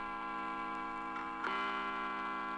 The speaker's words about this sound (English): What's that? What's that guy? That's the clock, I guess. A big clock. I guess it's. I didn't know there was a clock in here. There it goes again.